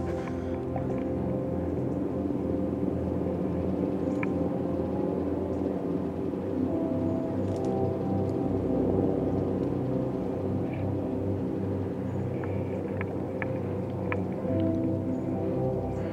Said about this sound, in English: Listen to that chopper.